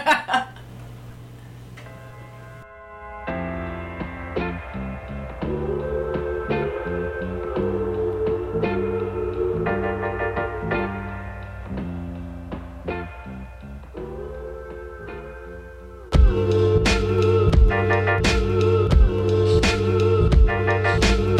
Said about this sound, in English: let's hear some more … here